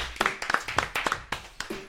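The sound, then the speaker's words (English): Scattered applause from a few people at a live show, given for a band: about ten sharp, uneven handclaps over two seconds, moderately loud with no talking. “Let's get a round of applause for them, too.”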